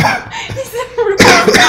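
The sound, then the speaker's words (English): A sudden, loud, harsh cough bursts out after a brief moment of murmured vocal sounds, then rasps on for a fraction of a second. “Coughed more. Right on me.”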